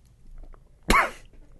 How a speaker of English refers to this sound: There, I was trying to swish it around and I let it go back a little too far and caused me to cough. Excuse me.